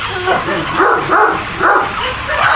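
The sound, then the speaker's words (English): An angry dog barks over and over in quick, rough, loud bursts, with hardly a pause between barks. “Sure the dog won't get out and attack us here? This is dog, an angry dog.”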